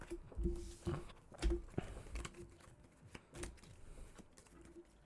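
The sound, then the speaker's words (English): Playing cards being shuffled during a game of War, a quiet run of quick papery clicks and riffles in uneven bursts, with faint background noise and no clear talking. “You were shuffling. Oh, that's his deck that he had to shuffle.”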